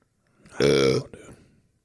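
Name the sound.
burp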